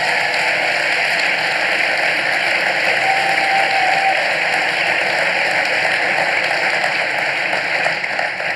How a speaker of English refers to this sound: So one more time, just please give a warm round of applause to my guests, John Lennox and Dave Rubin.